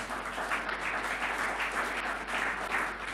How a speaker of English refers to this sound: Clap for women here.